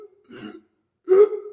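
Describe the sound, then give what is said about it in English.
A voice imitates laboured breathing through one lung with two strained, breathy gasps: a softer wheezy one, a pause, then a louder, harsher one with a groaning voiced edge. No words are spoken. “We do subconsciously constantly, and literally for 3 hours, every breath, I'm just going.”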